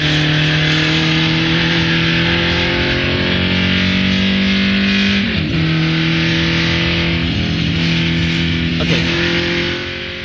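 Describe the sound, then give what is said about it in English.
A loud, continuous car engine drones steadily, its pitch dipping and climbing briefly twice as it revs, with no talking over it. “So here's what's interesting about this video is the sound of this car, and I want to know, is this the Clubman?”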